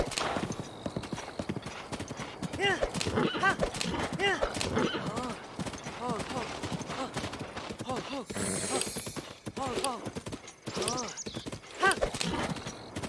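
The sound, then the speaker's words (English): Horse hooves clip-clop in a steady rhythm throughout, with a few loud neighs and whinnies rising over the hoofbeats. “Back on the horse.”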